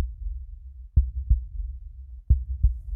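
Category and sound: sound effect, heartbeat sound effect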